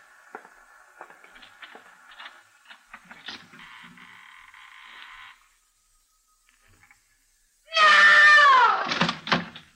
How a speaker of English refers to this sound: Shall we open the door?